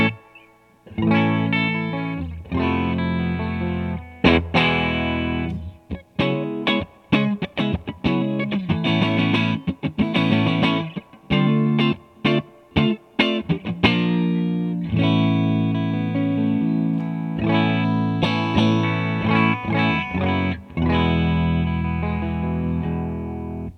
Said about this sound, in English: We're going to use the reverb in the amp today, since there is no reverb in the pedal, just a little bit. It's a spring reverb.